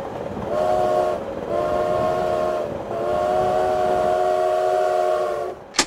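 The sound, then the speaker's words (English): A moving train rumbles steadily on its rails while a loud horn sounds in three long, sustained blasts, ending with a sharp click. “We landed in the center of the train.”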